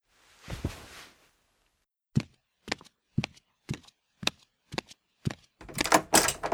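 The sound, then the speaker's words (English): Knocking on a door, about eight or nine firm, evenly paced raps, set between a short muffled rustle at the start and a louder, rougher burst of noise at the end. “Hang on a minute. Somebody's at my door, apparently.”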